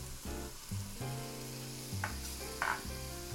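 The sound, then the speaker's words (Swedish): Onions and garlic, with leek and fennel, sizzle steadily as they sweat in a hot pan for a soup, fairly loud, with a couple of brief scraping stirs breaking through the continuous crackle. No one speaks. “Ja, och de ska liksom svettas lite, som man säger.”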